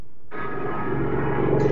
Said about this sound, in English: I had a plane go right overhead when you said that.